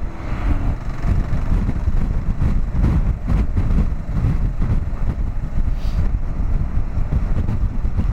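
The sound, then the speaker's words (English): Strong wind roars and buffets steadily against the microphone during a motorcycle ride across the Hood Canal Bridge, a dense low rumble with gusty surges throughout and the faint drone of an engine underneath. “Welcome to the Hood Canal Bridge. Everything's windy as fuck.”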